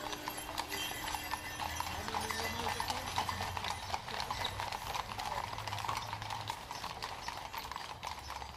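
horse hooves clip-clopping

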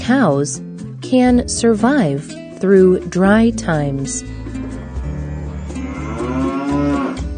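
cow mooing

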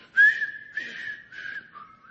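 person whistling a tune

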